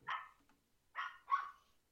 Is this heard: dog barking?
yes